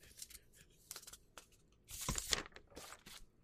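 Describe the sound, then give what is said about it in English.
Soft papery rustles and crinkles come in several separate bursts, with one louder, fuller swish partway through, like pages being turned slowly and quietly, with no talking. “Pages turning slowly.”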